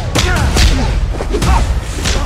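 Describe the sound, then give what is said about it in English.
Sharp slaps to the face in a movie scene, about four loud smacks with heavy low thuds, spaced unevenly over a couple of seconds, with faint vocal sounds between the hits. “I just slapped you.”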